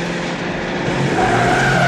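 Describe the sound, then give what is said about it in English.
A movie car chase of two cars driving through Sunset Boulevard: loud, steady engine roar with tires squealing in high, sustained whines that build toward the end. The sound is continuous, with no talking. “Famous slow car driving scene when those cars weren't considered slow.”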